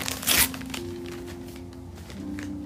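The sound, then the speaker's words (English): A short, sharp crinkle of wrapping paper being torn open as a birthday present is unwrapped, followed by a few fainter rustles and a low steady hum in the background. “She's gonna open it up and she's gonna pick one thing to unwrap from it.”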